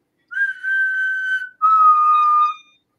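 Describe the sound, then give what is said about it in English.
A person whistles two sustained, steady notes back to back, the first slightly higher than the second, clear with a brief gap between them and no talking. “Can you copy this whistle?”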